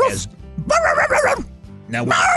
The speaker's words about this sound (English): I don't know what kind of dog that was.